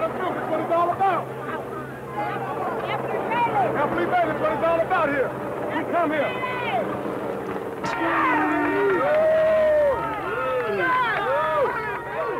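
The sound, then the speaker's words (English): A large crowd outside O.J. Simpson's estate shouts and cheers excitedly as a Jaguar drives through it, many voices overlapping in a loud, continuous roar of yells and calls that swells again partway through. “the crowd went wild.”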